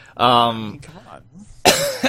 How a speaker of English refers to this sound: I'm coughing like crazy.